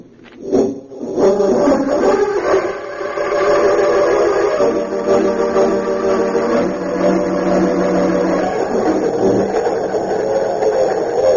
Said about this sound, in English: It seemed as the crack express, the Golden Comet, speeding through the night toward the city of Metropolis.